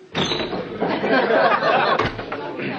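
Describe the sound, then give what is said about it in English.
A door swings open into a Harvester pub and a dense wash of pub crowd chatter floods in, many overlapping voices murmuring and laughing loudly and steadily, with a brief knock partway through. “This time, try actually going in the pub.”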